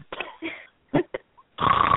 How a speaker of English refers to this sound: Oh, now see, they're snoring.